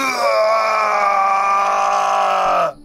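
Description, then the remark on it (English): A huge man leaning out of the back of a car lets out one long, loud, strained shout toward the sky, held for nearly three seconds, his voice sliding slightly downward before cutting off abruptly. It is forceful and alone, with no other talk. “The silence did not last long because, without warning, the man shouted with all his strength toward the sky.”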